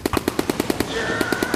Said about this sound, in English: Then, with just 50 yards to go, the Ottoman guns up on the ridge opened fire.